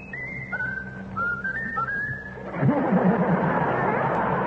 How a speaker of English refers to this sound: Whistle really the song you like best. Whistle your favorite tune. Now, whistle your favorite tune.